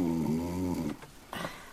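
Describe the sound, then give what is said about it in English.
A person snores: one long, rumbling, buzzy intake followed by a brief pause and a shorter breathy exhale. No one is talking. “And that's not Teddy. That's you snoring.”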